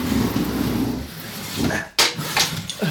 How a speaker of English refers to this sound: Here. Help me push this file cabinet in front of the door.